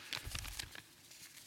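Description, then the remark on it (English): Soft paper rustling in a quick flurry of crinkly, scratchy movements, fading to near quiet partway through. No voices. “Just a rustle of paper for a little while, 1 second.”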